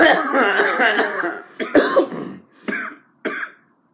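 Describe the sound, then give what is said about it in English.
A long, raspy coughing fit, then three or four sharp, separate coughs with short pauses between them, fading out at the end. “Cough more, you get higher, more higher.”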